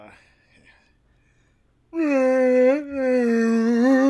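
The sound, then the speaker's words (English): After a soft breathy pause, a person lets out a loud, sustained warbling vocal roar imitating a Wookiee, broken by a brief catch midway, then continuing in a long, rising-and-falling howl. “What's your Wookiee impression? Let's hear it.”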